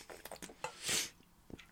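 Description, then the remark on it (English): Someone takes a quick drink of water: a few soft, wet mouth clicks, then a brief hissy gulp swelling and fading, followed by another small click. No one speaks. “Sorry, I need some water.”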